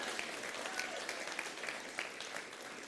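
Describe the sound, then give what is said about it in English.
An audience at a church service claps steadily, a dense patter of many hands with a few sharper individual claps standing out, sustained at a moderate level without any talking over it. “This was the last topic I thought I'd get a clap.”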